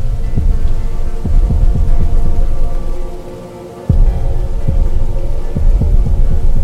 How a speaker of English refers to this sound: Collectively, as you look out over the graves, you feel that humming kind of deep inside you that's emanating from them.